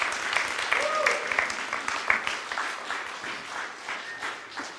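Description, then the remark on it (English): Scattered, polite golf-clap applause from an audience for a couple's 50 years of marriage, a light patter of claps that stays fairly soft and steady before tapering off, with faint murmuring voices underneath. “So you guys just golf clap 50 years of marriage, and that makes me mad.”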